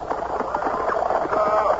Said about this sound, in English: And all of a sudden, from behind me, traveling at that reckless clip for those roads, a fiery black horse pulling an open chaise caught up to me from behind.